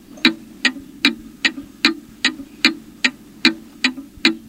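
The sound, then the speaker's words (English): A clock ticks steadily, crisp clicks arriving about twice a second in an even rhythm, with no voices and only a faint background hum between ticks. “That's right, it was a clock. Tick-tock, tick-tock, tick-tock.”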